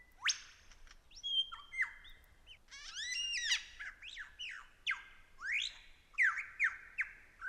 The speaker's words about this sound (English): I've been very carefully following this male lyrebird through the forest. He's keeping company with two females. I've been gradually getting closer to him, and now I'm quite close. It's why I'm keeping my voice down.